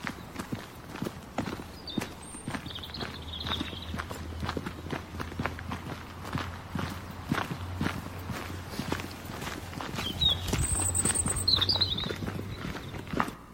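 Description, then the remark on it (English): Steady thumping footsteps of two people walking outdoors through the countryside, a regular rhythm of dull thuds over a low hum, with faint high bird chirps appearing now and then in the background. “You could kind of hear it, and of course you could hear the thump, thump, thump of both of our feet, but anyway, this is our lovely territory that we traveled through.”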